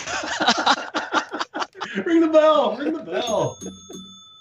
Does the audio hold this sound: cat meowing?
no